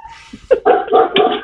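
Dogs bark at another dog in a quick run of four or five loud, sharp barks that overlap into a noisy burst, with no one talking.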